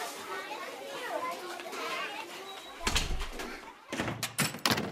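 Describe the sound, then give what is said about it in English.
A crowded school hallway full of children's overlapping chatter and shouts as they head to class after the school bell, followed by several loud, sharp bangs like doors or lockers slamming amid the noisy commotion. “The hallways are about to get very crowded.”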